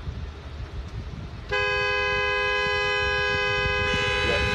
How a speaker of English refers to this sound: She's honking. So, yes, he was honking. She's honking at them because they've called the cops on her because she's being rude and an asshole and banging on the window and shit.